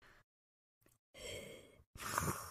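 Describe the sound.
Heavy, muffled breathing through a mask, heard over a black screen after a movie's end credits: a short breath, then two long, loud, raspy breaths in and out, with no talking.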